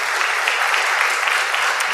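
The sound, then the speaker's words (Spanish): An audience in a church service applauds a pastor on his birthday, dense overlapping hand claps forming a steady, bright wash of sound that holds at an even loudness throughout, with no clear voices standing out. “Sí, un aplauso para él.”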